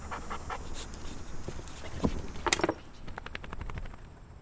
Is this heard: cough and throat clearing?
no